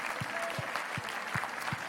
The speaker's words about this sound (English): Can we one more time give the Lord a hand clap of praise right now?